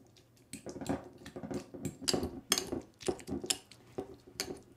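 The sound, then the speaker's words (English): Chopped food being mashed in a bowl to break up its cells for DNA extraction: a quick, uneven series of soft thuds and scrapes, a dozen or so strokes over a few seconds, with utensil clinks and no voices. “And then I'm going to start mashing it. This is to start breaking up the cells and to give us a bigger surface area to extract the DNA from.”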